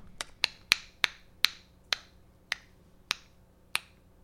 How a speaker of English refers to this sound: Our clock has sped up, and then it seems to find a steady rhythm.